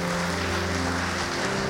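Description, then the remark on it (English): A church audience claps their hands together in praise during a sermon, a dense, steady wash of applause that holds at an even loudness, with a sustained low tone humming underneath. No one speaks. “Come on, give him a hand clap of praise in this house.”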